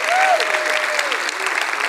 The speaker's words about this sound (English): Give a big hand clap to those that are watching us on podcast, vidcast, come on!